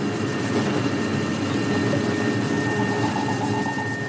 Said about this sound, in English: There's a piece of space junk called Envisat that's the size of a London bus. And if a very big bit of junk passes overhead, then you hear a very kind of deep tone.